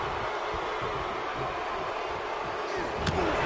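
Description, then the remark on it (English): A steel chair swung by Ravishing Rick cracks against wrestler Tony Nese in one sharp, loud impact near the end, rising above a steady roar of crowd noise. “Oh, what a hit of it!”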